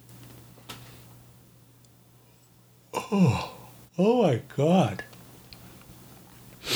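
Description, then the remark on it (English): A drawn-out yawn comes out voiced, with a few words stretched through it in wavering, arching pitch across about two seconds. Faint background hum and quiet surround it. “I don't know why I keep yawning.”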